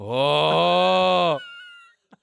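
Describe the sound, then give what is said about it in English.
A person makes a single loud, drawn-out droning snore with their voice, held steady for over a second before cutting off, followed by a faint brief tap. “Do the snore sound again.”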